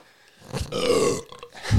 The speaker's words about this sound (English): I've burped on, like, every episode.